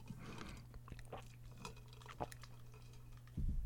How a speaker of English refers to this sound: Taking a drink of water.